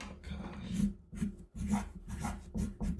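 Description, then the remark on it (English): A marker scratches across paper in a run of short, uneven strokes, roughly six rasping scrapes separated by brief pauses, fairly loud and with no one talking. “You write harder than me. Yeah, I hear my marker.”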